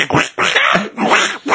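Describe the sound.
A person imitates a duck with four loud, raspy quacks in quick succession, each a short nasal burst separated by brief pauses.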